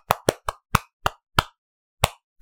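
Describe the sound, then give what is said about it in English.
Hollow, cupped thumps of a person beating their chest to imitate a gorilla's chest-beating: eight loud, resonant pops in a quick, uneven rhythm with a brief pause before the last, and no talking. “I can't make the cupping sound. Can you make the cupping sound?”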